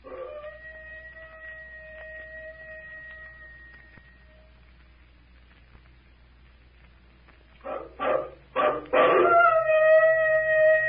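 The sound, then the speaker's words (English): A long, eerie howl from inside a temple holds a steady wavering pitch for several seconds, fades, then returns with a louder burst of rising, overlapping howling calls like a werewolf's cry, as if responding to the call. “I hope nobody in this room's a werewolf.”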